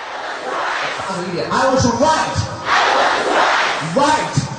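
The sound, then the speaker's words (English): A large crowd of thousands of people practicing English at Crazy English shouts short English phrases together in unison while raising and moving their arms, each word having a physical movement; loud rhythmic bursts of many voices rising and falling with brief breaks between lines. “The crowd raises and moves their arms together while shouting.”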